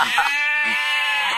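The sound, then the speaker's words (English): A sheep bleats in one long, wavering, nasal cry, loud, with the quavering tone holding steady across the whole moment. “Hang on, I was going to get rid of the sheep.”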